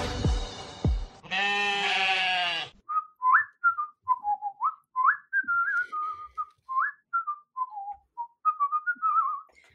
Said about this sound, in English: You know what? I'm not going to get tired of that. That is some awesome whistling on another level.